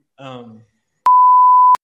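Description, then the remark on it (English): A short burst of a voice is cut off by a loud, steady, high-pitched censor bleep lasting under a second, a single flat tone that stops abruptly. “You can beep it out.”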